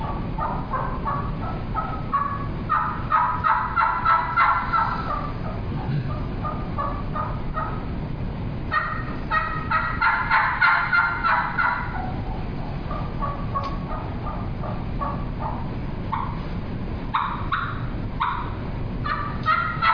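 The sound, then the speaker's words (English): A person imitates turkey hen tree calls, soft and muffled like a hen waking up, building into louder runs of rhythmic yelps to locate the other turkeys, repeated in several bursts over about twenty seconds, clear with no talking. “I'll do like a tree call, like a hen waking up, and then getting a louder to locate the others where they're at, maybe in the area.”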